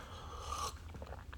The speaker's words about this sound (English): So let me take a sip here.